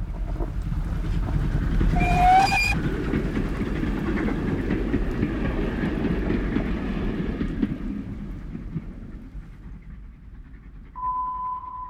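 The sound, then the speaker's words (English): A night train to Granada rumbles steadily along the rails with a low, heavy roar, a brief high squeal of wheels near the start, and fades toward the end as a steady tone sounds. “I climbed on a night train to Granada.”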